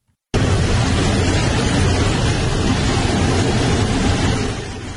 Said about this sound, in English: This is an open airline jet door while a plane was landing in South Korea. Guy on the way down opens the door mid-flight.